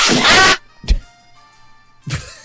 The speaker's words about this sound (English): Courtney, also link up this sound effect with him getting hit in the head with the chair.